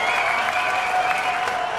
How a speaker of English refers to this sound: The cheer button.